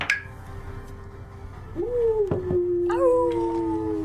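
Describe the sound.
A person imitates a wolf howl, drawing out two long, wavering howling calls that rise and slowly fall.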